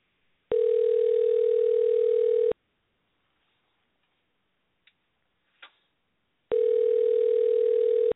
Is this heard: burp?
no